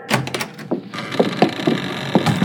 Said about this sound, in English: Guess what? What? I'm right outside your studio door. That's me knocking on the door.